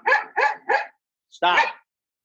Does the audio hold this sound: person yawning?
no